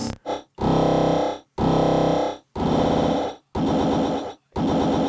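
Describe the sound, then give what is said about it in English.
A heavily processed, croaky toad-like convolution preset effect sounds in loud, dense bursts, about six of them, each lasting roughly a second with brief silences between. No one speaks. “The toad is dope. Go to the toad.”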